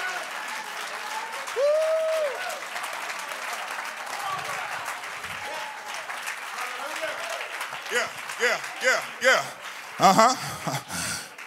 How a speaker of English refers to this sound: Oh, clap your hands unto the Lord and magnify.